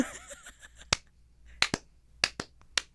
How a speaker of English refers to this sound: Slow clap. Two people slow clapping is so pathetic. It's so sad.